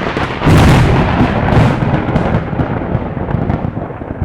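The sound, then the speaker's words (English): A loud, deep roar of thunder bursts in and rumbles on for several seconds, booming with a second swell before slowly fading, heavy with no voices. “It buzzed around in that form, and as the room went dark once more, there was a tremendous roar of thunder from the ceiling, the walls, the floor, all around.”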